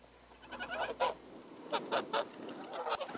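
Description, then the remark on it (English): Moon geese honk repeatedly in a loose, uneven series of short, nasal calls, some overlapping, moderately loud with no talking. “The moon geese are a very special migration bird, and they were firstly mentioned in a book by an English bishop, Francis Goodwin, and written in 1598.”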